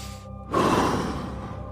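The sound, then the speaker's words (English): A single forceful exhale during a breathing exercise bursts out after a brief quiet moment, a loud, breathy whoosh of air that holds steady for over a second without any talking. “And then just as aggressively as you inhaled, I want you to let go any negative things, grudges, or anything that doesn't serve you as aggressively as you inhaled through your nose.”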